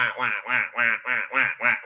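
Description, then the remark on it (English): A person does a nasal duck impression, quacking about seven times in a quick, steady rhythm with brief gaps between each honk. “It's going to be like ducks.”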